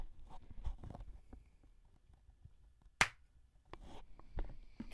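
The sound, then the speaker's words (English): One sharp, loud hand clap rings out, a single crisp smack given to sync a recording, standing alone amid faint rustling and soft bumps, with no talking. “All right, I'm also recording now, so if you want to give me the clap in a second.”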